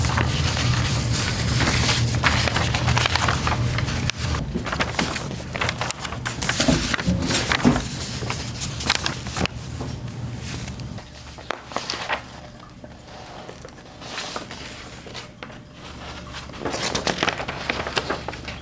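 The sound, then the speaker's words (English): Paper pages of hand-drawn, stapled comic books being turned one after another by an 8-year-old child, with crisp rustles and soft flapping swishes in an irregular rhythm, fairly loud at first and quieter later, with no talking. “You've been listening to the sound of an 8-year-old turning the pages of her hand-drawn and stapled comic books.”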